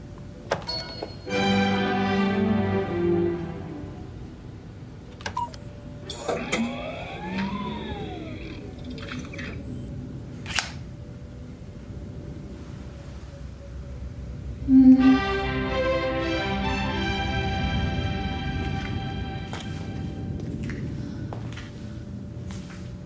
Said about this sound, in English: Do you know what that is? Yeah, that's Prokofiev's Peter and the Wolf. It is indeed Peter and the Wolf.